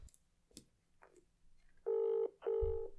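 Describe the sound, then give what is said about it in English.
A few faint clicks of a phone being dialed, followed by two loud, steady ringing tones in quick succession, each a buzzy, mid-pitched tone lasting under half a second, with no talking. “How do I call him?”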